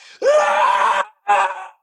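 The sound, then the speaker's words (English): An acted, loud, strained male scream of pain as his leg is torn away, a sustained cry of about a second that rises sharply, followed after a brief pause by a shorter second wail. “He lets out this horrible scream as his leg spirals away from him.”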